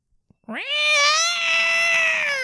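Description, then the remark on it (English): A person's voice imitates Pippa the cat screaming at the vet: a loud, sustained yowl that starts low, swoops upward, then holds a strained, piercing pitch for about two seconds after a few faint clicks. “What does it sound like? A cat screaming.”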